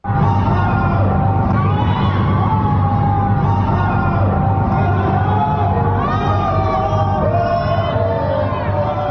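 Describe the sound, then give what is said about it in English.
Many voices shout and call out together, a dense, echoing chorus of yells and whoops that continues steadily: people in Wuhan yelling out their windows at nighttime, calling to each other to hang in there. “Yeah, that is literally just people yelling out their windows at nighttime, basically telling each other to hang in there.”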